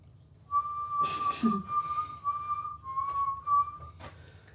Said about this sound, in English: Not with the bang, but with the penny whistle solo.